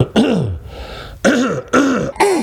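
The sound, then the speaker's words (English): A person clears their throat four times in quick succession, each a loud, rough, gravelly burst with a brief pause between, trying to dislodge stuck mucus while ill with coronavirus. “It's got like the mucus that won't come out.”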